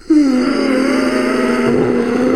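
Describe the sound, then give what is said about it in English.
A voice imitates a man's ordinary breathing while awake as one long, steady exhale with a low groaning hum, sustained evenly for a couple of seconds. “And people knew he was asleep because his breathing changed. So normally he breathed like this.”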